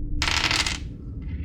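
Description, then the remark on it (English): Dice clatter across a table in a bright, rattling burst lasting about half a second, followed by a shorter, fainter rattle as they settle, over a low room hum. “That's enough dice”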